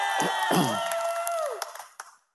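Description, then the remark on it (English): A small group of about 12 or 13 socially distanced people cheers and whoops in a 2,500-seat main auditorium in Mount Pleasant, a loud burst of voices and a few claps that fades out after two seconds. “You guys cheer. Just give them a feel of... There we go.”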